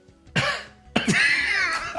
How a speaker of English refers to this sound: Like a random guy on like row 20 just coughs by the camera.